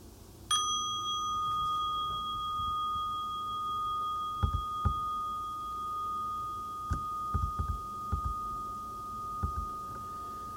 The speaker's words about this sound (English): So today I'll be inviting the bell of mindfulness occasionally again to slow me down a bit and let what I have said sink in. So when you hear it, just take three normal breaths, in and out, and we'll continue. So I'll invite the bell now.